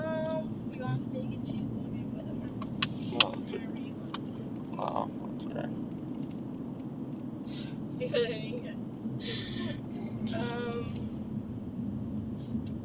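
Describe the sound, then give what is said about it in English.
A steady, low rumble of a car driving along the road continues throughout, with muffled voices and a few brief clicks and tones layered over the constant road noise. “I was talking to this car that was going to cut me off.”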